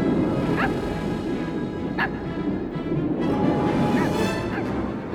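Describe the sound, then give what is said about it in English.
A small dog, Zero, Jack's little ghost dog reindeer, gives a handful of short, high yips and barks, spaced irregularly over a steady wash of background noise, with a couple of quick yelps near the end. “And what to your wondering eyes disappears is Jack's little friend Zero, the ghost dog reindeer.”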